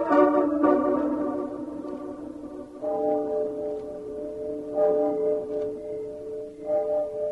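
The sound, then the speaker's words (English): A clock strikes midnight with slow, ringing bell tones, each strike's resonant hum lingering and fading before the next, about five strikes spaced a couple of seconds apart. “Nothing but the owls and the clock striking midnight.”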